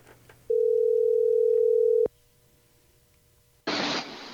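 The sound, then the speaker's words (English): A steady, mid-pitched telephone dial tone hums loudly for about a second and a half as a call is placed, then cuts off with a click. A brief quiet follows before a burst of harsh static hiss. “And since I happen to know the guy, why don't we just give him a call?”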